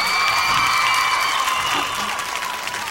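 A crowd at a stage show applauds a music group steadily, the dense clapping mixed with cheers and a few high whoops, loud at first and easing slightly toward the end.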